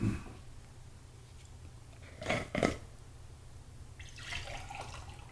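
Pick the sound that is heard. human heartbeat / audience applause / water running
water running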